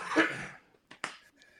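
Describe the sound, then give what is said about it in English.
One short cough bursts out, then two quick sharp clicks follow in quiet, with no talking. “No, I don't have a cough button.”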